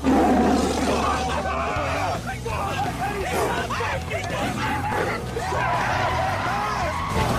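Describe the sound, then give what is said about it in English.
A tiger roars and snarls loudly inside a car, its head emerging from the back seat, continuous rough growls layered with panicked shouting voices throughout. “And slowly, behind them, you see this very fake looking... It looks so fake! Tiger head emerge from the back seat.”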